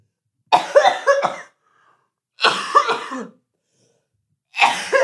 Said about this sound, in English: But do you want to take a minute to cough it out? No, I'm cough it out. I'm good.